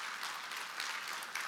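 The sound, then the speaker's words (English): A crowd applauds with dense, steady clapping, a continuous crackle of many hands at moderate volume with no voices over it. “We can clap for that.”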